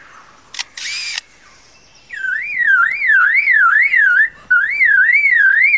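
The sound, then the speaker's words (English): A lyrebird mimics a camera with a motor drive: a sharp shutter click and burst of whirring, followed by rapid, repeating warbling whirs that rise and fall steadily, loud. “And now a camera with a motor drive.”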